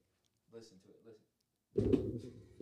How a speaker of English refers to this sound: Not the creaking of this daggum sofa.